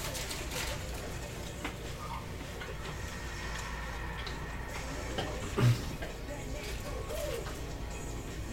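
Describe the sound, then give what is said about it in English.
A bird calls faintly a few times against a steady background hum, the brief calls sitting low in the mix. “No, that was a bird.”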